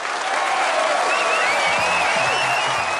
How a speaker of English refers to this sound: Let's get a little round of applause